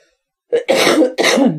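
A loud throat clearing followed by two harsh, raspy coughs in quick succession, with no talking around them.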